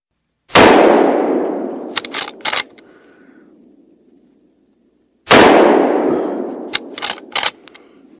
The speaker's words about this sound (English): This is not a quiet gun. This is not a gun you could even really silence. And they've already tested for silencer, and no silence was attached. So let's hear how loud this fucking thing is.